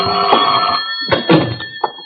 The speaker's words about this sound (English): Your telephone, Mr. Ross. Yes, then. Well, don't you think you'd better answer it? Why should I?